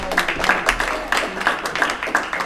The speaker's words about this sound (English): Another round of applause for gay aldermen, freedom fighters in the house.